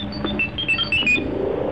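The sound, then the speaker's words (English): An electronic danger alarm warning of a tremor due in about three minutes sounds in rapid, high-pitched beeps that repeat over a steady background hum, moderately loud, with no voices. “Where's the next tremor due? 3 minutes, 13 seconds. Alarm! Danger!”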